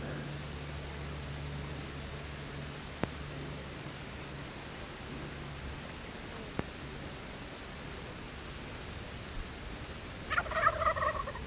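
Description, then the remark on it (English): A wild turkey lets out one short, rattling gobble near the end, heard while approaching turkeys, over a steady outdoor hiss of insects. Two faint clicks sound earlier. “Turkey preening down there.”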